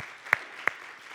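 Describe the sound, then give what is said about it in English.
A church audience applauds historic monthly missions giving in a steady, hissing wash of clapping, with two sharp, louder individual claps standing out about a third of a second apart. No one speaks. “Can you just clap for that?”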